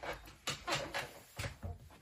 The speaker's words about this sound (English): You're about to hear my squeaky chair.